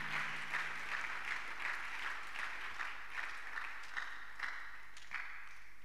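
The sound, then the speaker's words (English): A crowd claps steadily for several seconds, a dense wash of many hands with a few louder individual claps standing out, with no voices. “Those who are clapping, God is already talking to them.”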